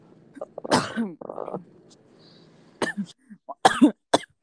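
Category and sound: human body sound, repeated coughing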